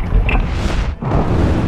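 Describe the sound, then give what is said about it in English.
A loud, sustained roaring rumble, heavy in the low end with a hissing top. It dips briefly near the middle, then surges back as a colossal explosion of raw fire billows out. “Evangeline's gaze shot up to the spanning window to witness a colossal explosion of raw fire.”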